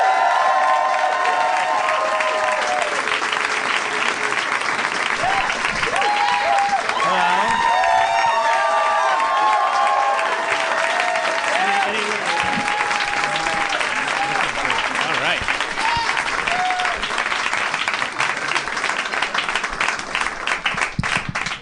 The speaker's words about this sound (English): There was some extended applause there. I think your legacy is palpable in this room. Can you give it another minute? One of you was clapping too hard.